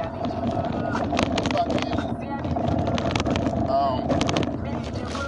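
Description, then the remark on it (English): Loose objects rattle and clatter in quick irregular bursts over the steady rumble and hum of a moving car, with a voice briefly audible beneath the noise. “I'm in the car, I'm driving, so if you hear a bunch of shit shaking around, that's that, that's what it is, that's what we doing.”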